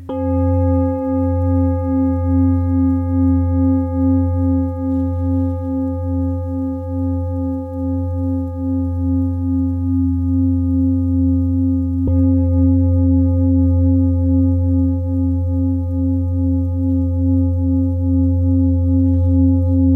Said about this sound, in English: To interrupt the sound, the air is vibrating around us, and Rich is using different mallets to strike the bowls, and I don't know what the heft of them is. Different materials or different weights that makes the difference? It's the different weights